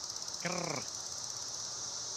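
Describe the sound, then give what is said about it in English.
A dense, steady chorus of Cassini periodical cicadas hums with a continuous high-pitched buzz throughout, briefly overlaid near the start by a short, tonal, wavering call. “This is Cassini.”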